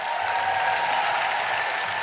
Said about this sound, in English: Can we have a big, big round of applause and thank you to everyone at the Roundhouse?